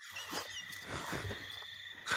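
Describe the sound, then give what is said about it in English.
A cricket trills steadily at a high pitch, a faint continuous buzz with no break, over a soft low background rumble. “That's a cricket, mate.”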